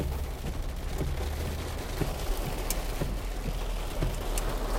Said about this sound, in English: It is a very rainy day.